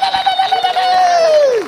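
A church audience breaks into cheering, one long high whoop held over the crowd noise before sliding downward and fading at the end, fairly loud.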